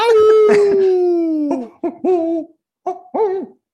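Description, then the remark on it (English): A person imitates an owl with a long, sliding hooting howl, followed by several shorter hoot-like vocal bursts, fairly loud with no other sounds around it. “It sounded like an owl for a second.”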